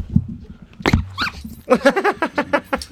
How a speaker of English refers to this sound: So he's a cockapoo called Scooby, and he's currently pulling on a green rubber toy. He won't let go. He never seems to let go, and I'm holding the other end of the toy, and it's a battle of wills.